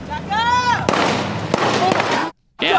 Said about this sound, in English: Shots fired. You can hear those protesting. Shots going off in that video. The COIN6 team was there when the shots were fired from a car as it sped away.